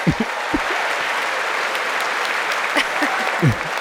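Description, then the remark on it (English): Steady applause at the State of the Union address, including clapping by Nancy Pelosi, a dense, even wash of clapping that holds at the same loudness throughout, with a few faint, indistinct voice fragments underneath. “She clapped to make sure he heard all that.”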